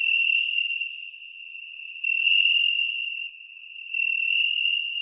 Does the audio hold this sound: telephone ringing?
no